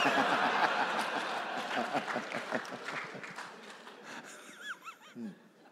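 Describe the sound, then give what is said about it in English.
A small crowd of about eight people claps scattered and unevenly, mixed with laughter and murmuring voices, before the clapping thins out and a few whoops and chatter remain near the end. “You thought you had time to sip, but there was like eight people clapping.”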